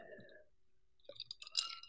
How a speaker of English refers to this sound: I was about to take a sip here, but I'm going to.